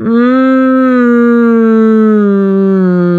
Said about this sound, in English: And what I'm doing is I'm placing that sound in a humming, pouting position where I'm aiming it straight for the teeth. Even though my mouth is closed, I'm aiming it straight for the teeth.